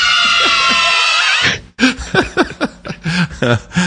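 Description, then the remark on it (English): A loud, dense wall of children screaming together, cutting off abruptly, then giving way to a rapid string of high-pitched shrieks and yells in choppy bursts. “So I took that clip and I realized there was something missing from it, and that was a bunch of kids screaming.”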